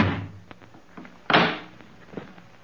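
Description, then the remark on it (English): A front door being opened and shut: a few soft handle clicks and knocks, then a solid, fairly loud thud partway through, followed by a fainter rattle. No one speaks. “No one's at the door. I'll take a look outside.”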